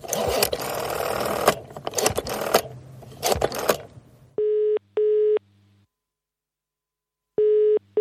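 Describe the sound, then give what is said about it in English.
A British-style telephone ringing tone, a double burst of a steady mid-pitched purr, a pause, then the double ring repeats. Before it comes a stretch of clattery, busy mechanical noise. “Why does it sound like I'm using a phone in the UK?”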